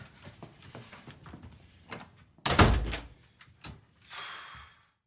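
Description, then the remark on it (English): A door is unlocked and opened: a string of small clicks and rattles, then a heavy thunk as it swings, followed by a brief rush of noise. There is no talking. “And so he gives him a kiss on the forehead and unlocks the door and lets him go or whatever.”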